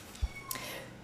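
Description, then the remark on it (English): A single brief cat meow, high and thin, rises out of a quiet background, preceded by a soft low thump. “Poor little kitty. He's like, I hear you in there.”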